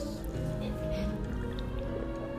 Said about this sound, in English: As I take a sip of my water.